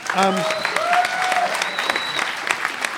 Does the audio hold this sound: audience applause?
yes